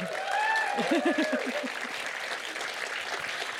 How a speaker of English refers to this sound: Everyone's just seen the film, of course. I think we've got rapturous applause there. So obviously still, yeah, finding that incredibly moving.